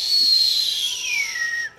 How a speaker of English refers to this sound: The stone flew up with a whistling sound.